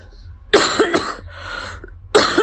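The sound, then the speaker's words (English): A person coughs, a burst of two or three harsh coughs followed by a breathy throat-clearing rasp, then another sharp cough at the end, no talking. “Sorry about the cough.”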